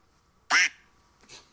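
A duck quacks loudly once, a short nasal honk, followed about half a second later by a fainter, softer second quack, with no talking.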